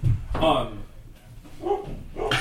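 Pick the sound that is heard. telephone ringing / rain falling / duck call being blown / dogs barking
dogs barking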